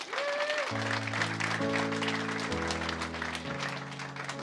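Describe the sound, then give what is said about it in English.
A crowd claps steadily throughout in a dense, continuous wash of applause, while sustained keyboard chords play underneath and shift every second or so. A church audience is applauding after praying together a prayer of commitment to Christ. “Give him a hand clap.”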